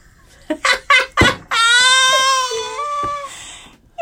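A hen gives four short, sharp clucks in quick succession, then lets out a long, drawn-out squawk that wavers in pitch. The sound is fairly loud, with no talking.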